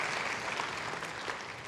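A church audience stands and applauds as a clap offering to the Lord, a dense, continuous wash of many hands clapping at an even loudness with no pauses, filling the whole short stretch without any voices standing out.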